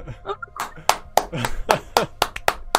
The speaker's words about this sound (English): Round of applause.